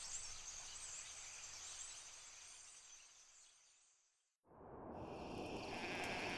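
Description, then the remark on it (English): A flock of sheep bleats at night in the hills and fields outside Bethlehem, watched by shepherds; many overlapping calls blend into a steady, busy chorus that pauses briefly before rising again, with no one speaking. “Out in the hills and fields outside Bethlehem, some shepherds were looking after their sheep through the long night.”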